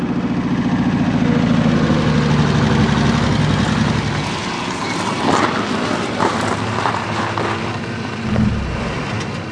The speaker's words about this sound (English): Listen! I remember that sound. So do I. It's a truck of some kind. Where do they get their gasoline? Then it must be army.